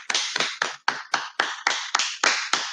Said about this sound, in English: I gotta give it up for Kim Kardashian. No matter what you do. A round of applause.